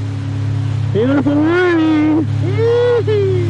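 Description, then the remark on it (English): Two jet skis rumble with a steady, loud engine drone as they leave the harbor in Nazaré, and a voice rings out in two long calls over the motor noise. “With eight cameras rolling and two jet skis, we took off from the harbor in Nazaré.”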